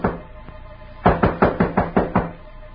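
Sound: knock on a door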